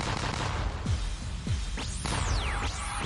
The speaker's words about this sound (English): Explosions. Okay, wait, let's get some.